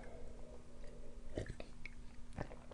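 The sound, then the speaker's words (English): A loud slurping sip of tea, heard as a few sharp wet mouth noises over a low steady hum, with no talking. “sip a tea. Hold on.”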